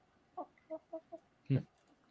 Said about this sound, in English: My chicken eats better than most of you. It's eating shrimp right now.